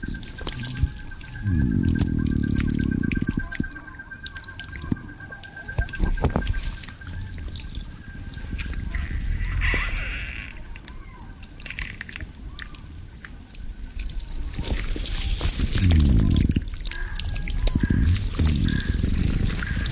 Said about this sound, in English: This submission is The Sound of Drift Ice, recorded in Utaro, Shiratoko, Japan, in March 2022. Every winter, a mixture of seawater and freshwater freezes in the Russian Sea and becomes drift ice, which gradually drifts to Shiratoko.